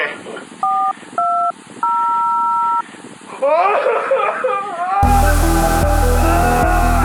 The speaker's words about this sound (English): I'm going to dial up Dolores' phone and then go ahead and pick it up from there